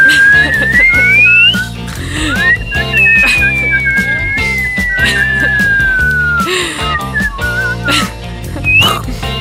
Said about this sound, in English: Can you do the inward whistle? Inhale whistle.